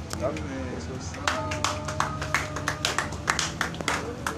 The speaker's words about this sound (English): Clap, man. Bless him, clap.